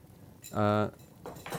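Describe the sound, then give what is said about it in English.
A bottle of Bad Elf dry hop ale (6%) being opened: a short, bright ringing squeak lasting under half a second, then a quieter breathy hiss of escaping gas. “I'm going to crack that open.”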